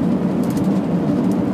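A car behind the speaker, its low engine and road rumble holding steady and unbroken for the whole moment, with a noisy hiss over it. No voices are heard.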